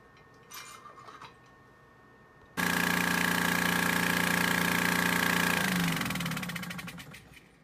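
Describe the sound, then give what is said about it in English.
After a brief clatter, a bead mill grinding freeze-dried tissue samples in 96-well plates with steel beads to break up the cell walls abruptly starts with a loud, steady mechanical whine and hum, then its pitch wavers and the rattling noise slowly winds down in the last couple of seconds. “The samples are ground with steel beads to break up the cell walls.”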